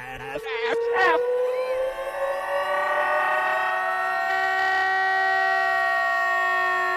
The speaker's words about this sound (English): And then come to me and beg me to play the fat alarm in reverse.